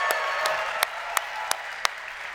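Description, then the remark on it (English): An audience applauds everyone who has been working on the event, a steady, dense wash of clapping, with a few sharper claps standing out at a regular beat. No one speaks. “So let's give everyone a round of applause that's been working here, killing themselves for this event.”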